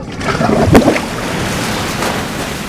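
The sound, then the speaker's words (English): Water sloshes and splashes briefly, then eases into a steady, soft wash of gentle waves lapping, with no voices, as the water calms back to its original tranquil state. “And the water calms down back to its original tranquil state.”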